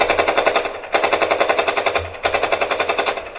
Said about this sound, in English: They assume that their fellow citizens will show them decency. Instead, they open fire.